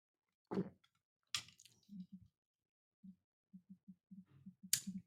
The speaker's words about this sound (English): Take a drink of water here. Maybe that'll do something one way or the other.